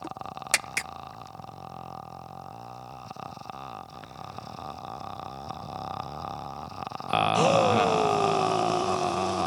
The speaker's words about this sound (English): Inward breathing? Okay, you won. It wasn't a contest. I thought genuinely in my heart of hearts that that's what people wanted to hear.